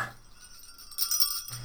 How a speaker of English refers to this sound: so I don't know why I have to ring in. I like my jingle bells.